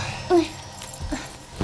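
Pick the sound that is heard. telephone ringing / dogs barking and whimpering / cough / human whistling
dogs barking and whimpering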